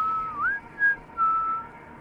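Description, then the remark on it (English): A single man whistles a short melodic phrase, clear, with sustained notes, a quick upward glide, and brief pauses between phrases over a faint background hum. “That's the man who whistles.”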